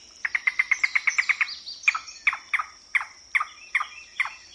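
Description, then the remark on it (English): A yellow-billed cuckoo, in a recording from the Audubon Society, calls alone and clearly: a fast, even run of about ten hollow knocking notes, then a slower series of seven longer, throaty notes spaced evenly apart. “A yellow-billed cuckoo.”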